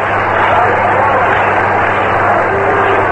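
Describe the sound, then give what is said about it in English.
A baseball crowd at an All-Star game applauds New York Giants manager Mel Ott as he comes up to pinch hit, in a dense, continuous wash of clapping and cheering that stays loud and even for the whole stretch, with a low steady hum underneath. “Ott is getting a great hand from the crowd.”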